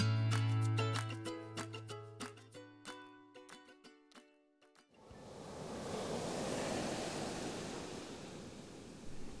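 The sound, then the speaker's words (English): Tinkling, bell-like music plays for a few seconds, then gives way to a steady, broad rush of ocean surf washing onto a sandy shoreline under moonlight, moderately loud and continuous with no voices. “Under the light of the moon, shelled creatures emerge from the ocean and make their way onto the sandy shoreline.”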